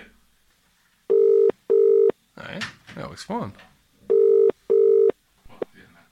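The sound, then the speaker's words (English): An outgoing call's ringback tone sounds twice in a double-ring pattern, two short loud steady beeps each time, with people briefly talking in the gap between the rings. “Let's see if we can get him to pick up the phone. The fuck is it sending out sonar beams?”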